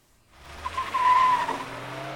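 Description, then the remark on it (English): A Porsche 911 sports car skids to a stop, its tires letting out a sustained, high squeal over rising road noise that swells for about a second, then fades into a low idling rumble. “Damn, is that a 911 slope? Beautiful car.”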